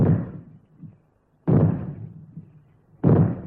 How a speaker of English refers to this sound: And now here is a reminder about fallout warnings. When fallout is expected, you will hear three bangs in short succession, like this.